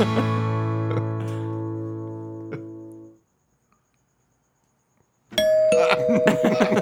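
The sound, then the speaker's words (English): A resonant acoustic doorbell chime rings out with rich sustained tones that slowly fade over three seconds, followed by silence, then a burst of brighter, busier sound. “It's like an acoustic doorbell.”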